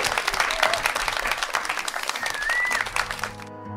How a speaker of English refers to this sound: And if everybody could give Alex a massive round of applause. Thank you, everyone.